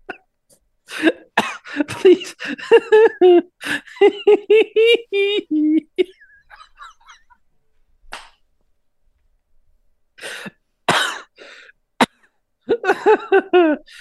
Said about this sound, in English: Hey, your coughing's got a lot better since you quit smoking.